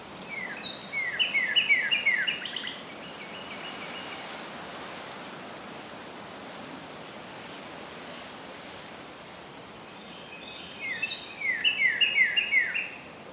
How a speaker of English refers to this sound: Birds begin singing all around you. Relax for a moment as you imagine the colors and the smells and listen to the wind blowing through the trees and the birds singing.